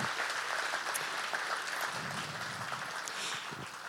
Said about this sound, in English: Can you just applaud the young people we're going to be passing the baton on to?